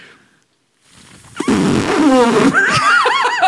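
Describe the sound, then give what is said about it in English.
A person attempts an elephant trumpet with their mouth, but it comes out as a loud, wavering squeal whose pitch wobbles up and down, like air squeezed out of a balloon's neck. “That sounded like when you blow up a balloon and then you squeeze it to let the air out a little bit.”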